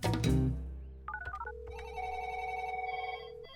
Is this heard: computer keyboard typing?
no